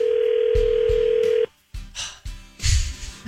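A telephone rings on the line as radio station K102 places an on-air call: a steady electronic tone holds for over a second, then cuts off and gives way to several short, louder bursts of sound.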